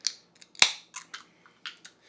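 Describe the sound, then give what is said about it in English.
A beer container is opened: a few small metallic clicks, then one sharp pop with a brief hiss, followed by several lighter clicks and taps. No one speaks. “Let's go ahead and get this open.”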